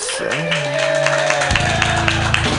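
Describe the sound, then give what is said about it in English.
A comedy show crowd claps steadily to vote for a contest winner while several people let out long, rising whoops and woos over the applause, a loud, dense burst of cheering that carries on throughout. “There's some woos and claps.”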